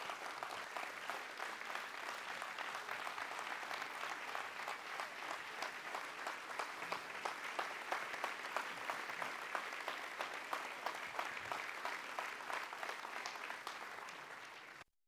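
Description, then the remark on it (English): A large church audience applauds steadily, giving God a hand clap of praise, many hands clapping in a dense, sustained wash of sound for about fifteen seconds before it fades out. No one speaks over it. “And to that, I'm going to ask that you would stop just for a second and give God a big hand clap of praise to thank Him for that person who sacrificed for you, who sacrificed for you to be there.”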